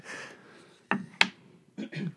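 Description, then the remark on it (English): A box lid held closed by neodymium magnets and marked with the Allomantic symbol from the Mistborn series snaps open: two sharp, crisp clicks in quick succession, then a couple of softer rustling bursts as the lid shifts, with no talking. “This is held closed by neodymium magnets.”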